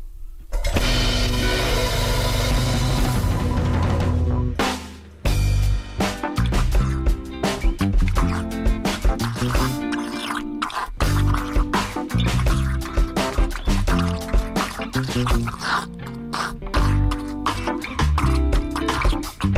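Water bubbles and churns at a rolling boil, a dense, continuous gurgling with irregular pops and splashes throughout, briefly dipping before carrying on just as steadily.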